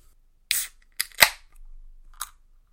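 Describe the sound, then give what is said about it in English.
A few sharp, bright clicks and a loud snapping crack as a beer can tab is popped open, followed by a soft, low fizzing pour of the beer and one final small click. “I'm going to go ahead and, as I do, crack this open, give it a pour, and give some impressions.”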